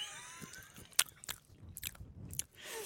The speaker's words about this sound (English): If you're interested in knowing what the muffin is, vegan blueberry. I've just got a little bit of muffin. How is it? Yeah, it's good. I also have some coffee here. I'm going to take a sip. Let me just take another bite of this.